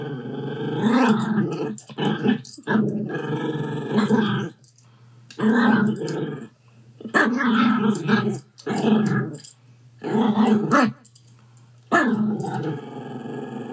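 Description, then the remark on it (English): A Yorkie growls and barks in a string of harsh, rasping outbursts, about seven bursts separated by brief pauses, loud and agitated with no talking. “That's apparently Yorkie for "Can I talk to the manager?"”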